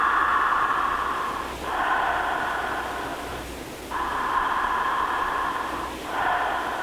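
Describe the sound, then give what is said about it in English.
Slow, deep breathing through the mouth, demonstrating the breath as a wave, with an airy, rushing hiss like waves washing in and out: three or four long breaths separated by brief pauses, steady and fairly loud, with no talking. “And just remember that the breath is like a wave.”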